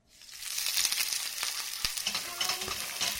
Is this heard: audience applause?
no